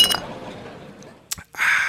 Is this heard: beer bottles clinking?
yes